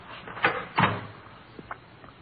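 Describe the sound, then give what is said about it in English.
A door is opened and shut with two solid wooden knocks close together, followed by a couple of softer clicks as it settles. No one speaks. “It's right through that door.”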